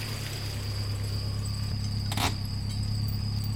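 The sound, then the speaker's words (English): A heavy truck's engine rumbles low and steady as it backs in through the opened main door of a warehouse at Orlando Speedway, with a faint high whine above it and one brief clatter partway through. No one speaks. “With a flick of a switch, the main door opened. A truck backed in.”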